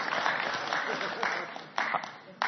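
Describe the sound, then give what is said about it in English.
Deliberately scattered applause from an audience at the speaker's request, a steady patter of clapping hands lasting a couple of seconds, with a few sharper claps standing out near the end. “Now, let's scattered applause.”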